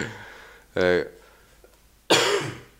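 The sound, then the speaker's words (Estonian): Two separate coughs, fairly loud, with a pause of about a second between them: the first short and throaty, the second a harsher, breathier burst. No one speaks. “köhib, ma ütlen.”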